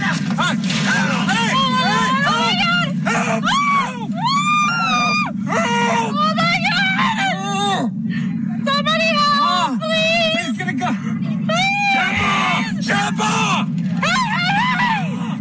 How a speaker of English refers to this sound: That's the very beginning, and then you'll hear people screaming for help or whatever. They're watching what's going on.